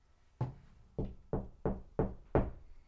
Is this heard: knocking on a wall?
yes